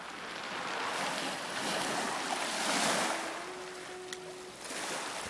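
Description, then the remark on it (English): Steady wash of waves rolling onto Iona Beach on Lake Superior, a rocky shore where the rocks are all about the same size, a broad hissing surf that swells and recedes, with a faint thin tone and a small click near the end; no one speaks. “This is Iona's beach. I stand corrected. In Lake Superior.”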